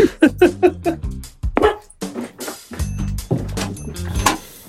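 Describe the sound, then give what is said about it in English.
A puppy, Charlie, barks and yips in a quick series of sharp, fairly loud calls, with excited whining and busier, scuffling sounds between the later barks. “I have been mauled by love and affection, and maybe a dog who needs to go out.”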